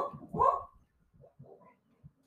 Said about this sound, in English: Goddamn dogs.